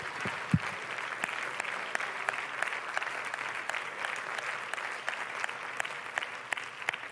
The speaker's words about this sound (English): Let's clap our hands to the Lord, shall we?